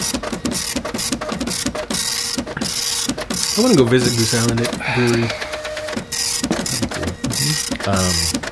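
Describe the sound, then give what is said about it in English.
A computer printer runs steadily, printing out a beer rating from the MTS computer, its mechanism rattling out a rapid, rhythmic series of clicks and whirs at a fairly loud level while a man talks over it. “Okay, now we just got to wait a couple minutes for the MTS computer to do its thing, and I'll grab the printout, and we'll know exactly what the rating on this beer is.”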